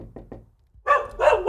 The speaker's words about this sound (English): We are knocking on Zach's door.